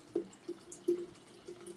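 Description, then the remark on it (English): Lime watermelon AHA sparkling water pours steadily from a can into a container of lemonade and guava juice, with a few soft glugging bursts and a faint fizzy hiss, no voices. “Adding a can of AHA sparkling water.”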